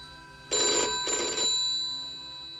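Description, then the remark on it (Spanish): A telephone bell rings in two loud, rattling bursts, each about a third of a second long, with a fading metallic hum lingering afterward. No voices are heard. “Y de pronto, el timbre del teléfono la estremeció. Vibraba terco, persistente.”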